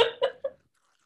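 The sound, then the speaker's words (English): Loud, obnoxious chewing: three wet smacking mouth sounds in quick, rhythmic succession, followed by silence. “The most obnoxious chewing I can do.”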